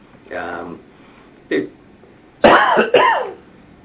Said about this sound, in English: A little bit of coughing here.